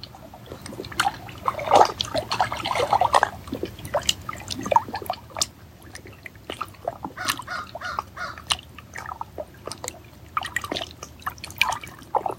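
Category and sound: nature, trickling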